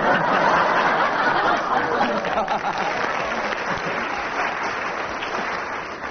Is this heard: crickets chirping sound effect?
no